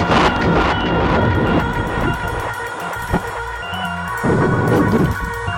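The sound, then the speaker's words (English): A loud, sustained crash of thunder with lightning overhead rolls and rumbles throughout, dense and booming, with a few sharper cracks and swells of intensity near the start and again toward the end. “Lightning and thunder are crashing down around us.”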